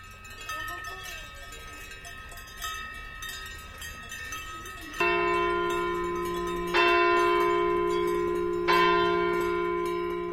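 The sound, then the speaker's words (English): Cowbells clank and jangle in a steady tangle of tones as a herd of belled cows heads back to the barn in a Swiss alpine village, then big bells of a nearby church chime the Angelus, striking three times, each stroke ringing out and slowly fading over the clatter. “In a Swiss alpine village, Stephen Feld recorded a herd of belled cows heading back to the barn as the Angelus chimes from a nearby church.”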